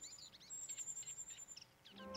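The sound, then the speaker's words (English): Rapid, high-pitched begging peeps from a young cuckoo, repeated in quick bursts to prompt reed warblers to bring it food, with soft rustling underneath and a faint chirp near the end. “The ever-open, bright red beak and the constant peeping from the cuckoo prompts the reed warblers to bring it food without a break.”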